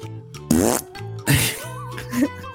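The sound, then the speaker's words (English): Someone blows three wet, buzzing raspberries with their lips, each loud and a short fluttering burst, with a faint steady hum in the background. “Yep, everybody, blowing a raspberry is a good one.”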